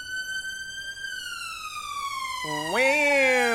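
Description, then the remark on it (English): A loud ambulance siren passes slowly by a window, its steady wailing tone sliding down in pitch and then sweeping abruptly back up, filling the whole stretch. “Sorry, there's an ambulance going by.”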